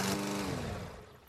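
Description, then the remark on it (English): A lawn mower engine drones steadily as a man mows a lawn, a buzzing, humming motor that eases off slightly toward the end of the short stretch, with no voices. “This one is also better because you can hear her yelling in the background two times before he hears her over the mower.”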